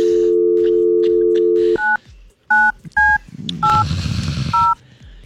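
A steady dial tone hums for a couple of seconds, then cuts to about five touch-tone keypad beeps pressed at an uneven pace, with faint handling clatter between presses.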